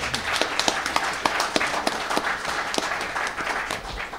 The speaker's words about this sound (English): That's got to be worth a small round of applause, surely.